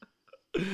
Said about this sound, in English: This isn't one of mine. My farts have been hacked.